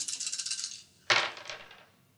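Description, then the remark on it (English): Three black dice rattle rapidly in a hand or cup for about a second, then tumble onto a hard table with a sharp clatter that fades quickly, rolled for an athletics check in a tabletop role-playing game. Fairly loud, with no talking. “That's a 3 black dice. Let's try it.”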